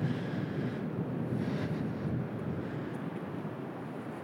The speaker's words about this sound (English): I'm getting closer to the actual beach where the waves are breaking and the rock pools are a bit deeper here.